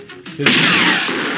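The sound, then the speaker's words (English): After a brief muffled sound, a loud blast of film-style gunfire erupts and rolls on as a sustained, crackling roar that barely fades for about a second. “This gunfire in this movie, it was like a cowboy western with all the freaking gunfire.”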